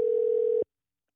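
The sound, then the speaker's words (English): A steady telephone dial tone hums at one constant pitch for about half a second while calling back a caller whose line got disconnected, then cuts off abruptly into silence. No voices are heard. “Oh, you guys, if anybody's tuned in, his line got disconnected. So hang on, I'm gonna get him right back on the line for you guys.”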